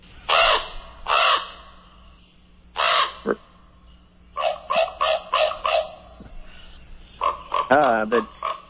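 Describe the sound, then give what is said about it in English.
Harsh, hoarse northern raven calls: a few spaced croaks, then a quick run of about six clipped calls, ending in a warbling, gurgling call. Clear against a quiet background. “The dulcet tones of the northern raven.”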